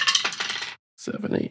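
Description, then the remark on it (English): Dice clatter and tumble across a hard tabletop in two bursts, bright clicking rattles separated by a brief silence, fairly loud, as a player rolls the dice for a game move. “Why don't you roll that up?”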